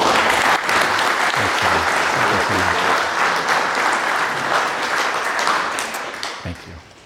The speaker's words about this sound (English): So ladies and gentlemen, if we could have a round of applause